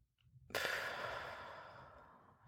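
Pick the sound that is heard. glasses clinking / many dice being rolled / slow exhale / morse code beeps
slow exhale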